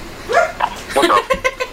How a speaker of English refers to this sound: Oh, there's a dog.